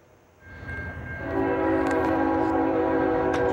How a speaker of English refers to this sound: A semi-truck was on the tracks as a train was approaching, but the big rig hauling vehicles was hauling vehicles and was caught up in the crossing arm. The driver was slowly trying to clear the tracks, but didn't clear in time.